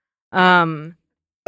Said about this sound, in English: so it's her fault I'm going to keep burping into the microphone. Yeah, I wanted 20% more burps this episode.